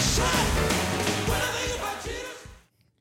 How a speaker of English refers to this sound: Oh, yeah. We're just shouting today.